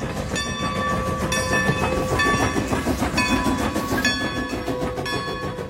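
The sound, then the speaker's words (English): A train arrives at a station, rumbling loudly and steadily, its heavy low roar overlaid with a rhythmic clatter of wheels and sustained high metallic tones, with no voices present. “Ere long the train came with loud rumbling din, and not to detain it, we quickly got in.”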